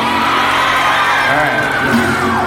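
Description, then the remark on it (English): A crowd of schoolchildren at Barron's Riverview Middle School cheers and shouts together, a loud, steady wash of high young voices with scattered whoops rising above the din. “Finally had reason to cheer.”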